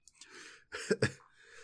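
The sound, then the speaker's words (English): A short coughing fit: a couple of harsh coughs in quick succession, framed by raspy, breathy inhales and exhales, with no talking. “But sorry, coughing fit.”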